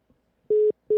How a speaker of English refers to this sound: What the fuck? Is this my phone tweaking? T-Mobile must be going through that thing again.